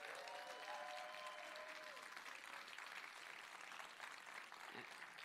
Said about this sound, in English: There's many ways to close this message, but because it's the 45th anniversary, I think we should give a big round of applause to our founding pastor